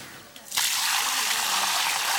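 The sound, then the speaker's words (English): A steady gush of urine mixed with water, used as fertilizer, poured onto the ground around a plant's base. It starts abruptly after a brief quiet moment and continues as an even, hissing splash to the end. “Pouring it around the base of the plant rather than directly onto it means that the nutrients reach the plant's roots.”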